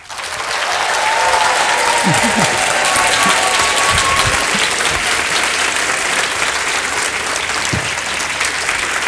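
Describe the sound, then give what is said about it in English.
A large Edinburgh Book Festival audience applauds loudly and steadily to welcome Michael Rosen, a dense wash of clapping that holds at full strength for several seconds, with a few faint voices and whoops mixed into the noise. “A huge, noisy Edinburgh Book Festival welcome for Michael Rosen.”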